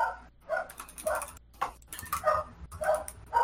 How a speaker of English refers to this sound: I'm going to say it's canon that your... animal companion, the Metroid parasite, has learned to bark.